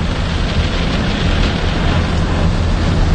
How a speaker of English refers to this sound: And I thought I'd give myself a little present. And that little present is going into the car wash.